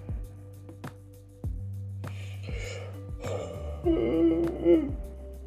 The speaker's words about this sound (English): Excuse me for yawning. I'm a little tired.